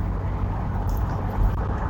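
A steady, droning low rumble of road and engine noise fills the space, like sitting inside a moving car, with no voices and nothing else standing out.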